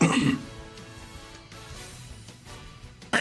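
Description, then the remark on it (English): A man clears his throat in a short, rough burst, followed by a low steady hum and near-quiet before another brief noise at the very end. “That's … clearing his throat right there at the end.”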